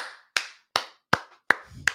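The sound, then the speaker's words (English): Slow, steady hand claps, about five or six sharp smacks evenly spaced in a brisk rhythm, like a single person applauding. Nobody speaks. “Round of applause for Mr. G making the right call.”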